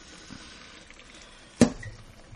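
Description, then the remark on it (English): Hot boiled rice being strained: a soft watery hiss, then one sharp clack and slosh, followed by a faint, brief trickle of draining water. “So, just straining the rice. It's really hot because it was boiling.”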